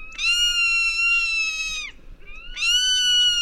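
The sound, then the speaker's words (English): A zone-tailed hawk of the American Southwest gives two long, high, harmonic screams, the first drawn out and sagging downward at its end, the second shorter, over a faint low background hiss. “A common sight in the skies of the American Southwest is the zone-tailed hawk, which has an unusual way to sneak up on its prey.”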